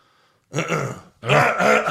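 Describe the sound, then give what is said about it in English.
Two loud, raspy throat-clearing bursts in quick succession, each a rough, gravelly rumble lasting about half a second, with a brief pause between them, done as an impression of Stone Cold. “He cleared his throat as Stone Cold.”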